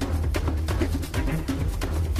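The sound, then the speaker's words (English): Loud, dense orchestral video game music with heavy low brass and strings, punctuated by rapid, forceful percussion hits in a driving, dramatic rhythm, with no voices. “And music has changed from an electronic style to bombastic orchestras.”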